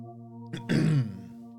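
A single rough throat clearing: a brief catch, then a harsher rasping push that fades within half a second, over a steady low humming tone underneath.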